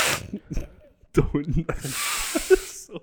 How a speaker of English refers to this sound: So fucking gross. I got the sniffles.